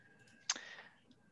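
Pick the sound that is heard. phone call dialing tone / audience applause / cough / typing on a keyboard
typing on a keyboard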